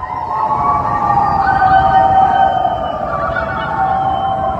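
Residents of Washington Avenue in downtown St. Louis howling together in their nightly 8 p.m. howl for healthcare workers, their long overlapping wails rising and falling like a siren in one loud, continuous, wavering chorus.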